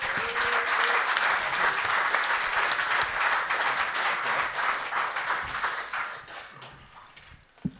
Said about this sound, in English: And a huge round of applause to the Times' Henry Winter.